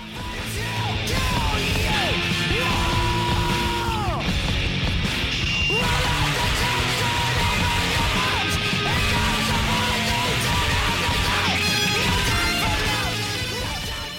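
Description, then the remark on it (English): A raw, shouted hardcore punk scream tears over loud, dense distorted rock music with crashing drums, sustained and harsh throughout at a constant high level. “Proper hardcore punk scream, man.”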